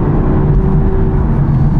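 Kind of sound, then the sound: vehicle, car engine revving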